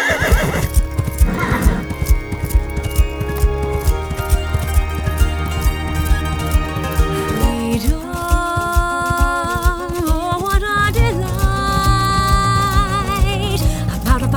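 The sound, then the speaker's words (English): Horse hooves pound in a steady gallop while the horse lets out loud, shrill whinnies, continuous for the whole stretch. “Is there any wonder I'd take a horse and escape into town?”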